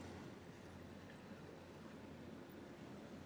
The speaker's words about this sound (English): Hold for boat.